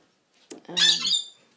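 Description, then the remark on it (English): A pet bird lets out one loud, harsh squawk, lasting just under a second, with no voices around it, as food is brought to the birds. “Yes, here cometh the food, birds. Oh, the excitement.”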